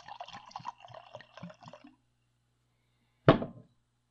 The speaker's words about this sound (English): anyway, I'm going to pour some scotch.